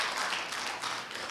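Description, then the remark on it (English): A crowd at a Celebrate Recovery summit claps for the Lord together in a steady, dense burst of applause, many hands overlapping into a bright, continuous patter with no voices rising above it. “Come on, let's give a clap up for the Lord.”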